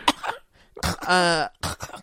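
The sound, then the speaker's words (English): A small child coughs several times in quick bursts, one stretched into a raspy, voiced hack in the middle, with brief pauses between the fits: the very sick Tiny Tim coughing in a Muppets version of A Christmas Carol. “Time Tiny Tim coughs, I laugh so hard.”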